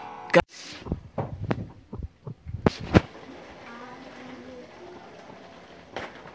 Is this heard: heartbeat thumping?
yes